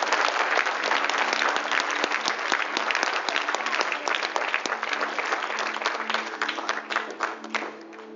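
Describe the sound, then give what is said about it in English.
A church audience claps to God together in a loud, dense burst of applause that holds steady for several seconds, then gradually thins and softens toward the end, with a faint low hum underneath. “Come on, clap to God if you're going to do it.”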